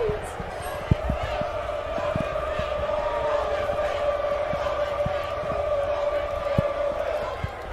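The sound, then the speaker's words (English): A large stadium crowd boos in the rain, a long, steady drone that fills the whole stretch, with scattered sharp thumps and knocks popping through the noisy din. “Oh, they booing because it's raining.”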